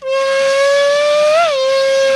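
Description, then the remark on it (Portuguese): A voice imitates a Formula 1 car with a loud, steady, buzzing high whine held for about two seconds. The pitch creeps upward, then briefly bumps and drops near the end. “Quer um carro de Fórmula 1? Faz.”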